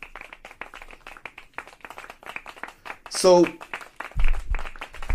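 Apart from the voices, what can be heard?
clapping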